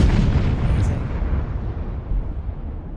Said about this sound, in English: I'm going to put an explosion sound effect here tomorrow when I'm editing this.